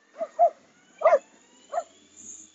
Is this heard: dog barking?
yes